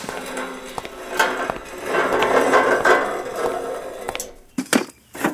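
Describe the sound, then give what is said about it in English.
A lawn chair is unfolded and set up in a driveway: rattling metal clanks and clicks, a stretch of scraping and rustling, then a few sharp snaps as it locks into place. No one speaks. “Go ahead and grab one of those lawn chairs over there and set it up in the driveway.”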